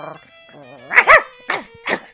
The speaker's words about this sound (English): He went to pet the dog. But the dog clamped down on him and tried to bite off Merle's hand.